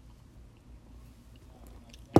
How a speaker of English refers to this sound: Take a nice sip of Coke there.